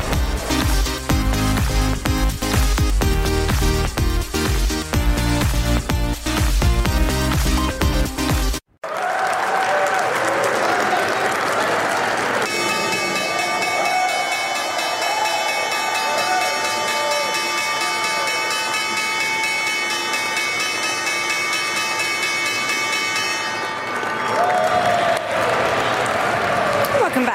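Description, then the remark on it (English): After a few seconds of upbeat music, a crowd applauds and cheers while a stock exchange opening bell rings steadily for about ten seconds on a Wednesday morning. It is rung by Empire State Realty Trust executives celebrating the opening of the Empire State Building Observatory Experience, its bright, sustained tone sounding over the clapping. “First Move, and that was the opening bell this Wednesday morning.”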